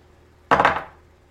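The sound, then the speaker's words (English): Dice rolled for a perception check in a tabletop role-playing game tumble across a table in a quick, bright clatter of a few hard clicks, settling and fading within half a second. No one speaks over it. “I think I'm going to roll a perception check because I'm not really fond of Lolth.”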